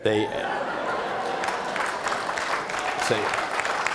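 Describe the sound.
Steady, dense crowd applause fills the whole stretch, a continuous wash of clapping with a few brief voiced calls or laughs rising out of it at the start and near the end.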